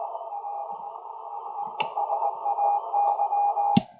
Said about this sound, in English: So there's without the filter, and there is with the filter. Without the filter, you can hear a lot of more of the background and the static.